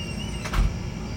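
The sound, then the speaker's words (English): A door swings shut with one brief, muffled thump, set against a steady low background rumble. No one speaks. “I heard what you said, and I said go inside and shut the door, please.”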